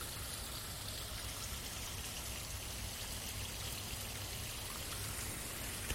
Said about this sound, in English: Ah, listen to the sound of that water.